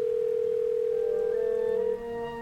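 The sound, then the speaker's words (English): A steady, continuous telephone dial tone hums at moderate loudness as a phone call is made, then shifts slightly near the end as other faint tones join in. No voices are heard. “Watching from my window, I make a phone call as they gather.”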